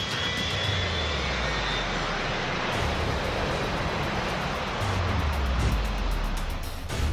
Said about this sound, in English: They got us all on that thing, and after what seemed like ages, the doors closed. We taxied away and lifted off.